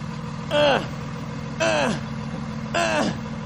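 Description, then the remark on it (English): A bus engine idles with a steady low rumble, broken three times by short, falling whining tones spaced about a second apart, heard clearly. “So the poor guy, when the bus comes, he gets on the bus and he's, getting up the steps.”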